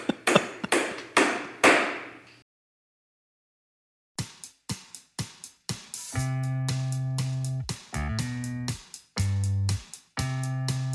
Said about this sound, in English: Stop the hammering. Stop the hammering out there. Who's got a hammer?